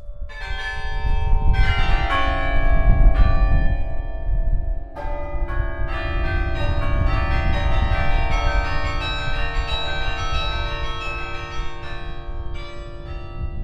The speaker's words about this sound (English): The wind was howling, and the 56 bells, some weighing thousands of pounds, thundered overhead.